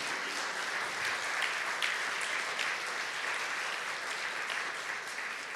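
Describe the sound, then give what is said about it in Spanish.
A church audience applauds steadily for several seconds to glorify the Lord, a dense, even wash of many hands clapping with a few sharper claps standing out, sustained at a constant level throughout. “Si lo creen, dale un aplauso fuerte al Señor.”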